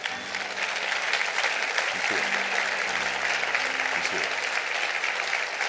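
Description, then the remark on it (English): An audience, asked to stand and clap for the Lord, claps steadily, a dense wash of many hands applauding at an even, sustained volume, with faint low tones and murmuring voices underneath. “Stand to your feet, receive the word, clap your hands real big.”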